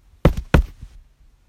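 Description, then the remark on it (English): Three knocks on wood: two sharp, solid raps followed by a softer third, each with a dull, hollow thud and a quick decay, with no voices. “Knock on wood.”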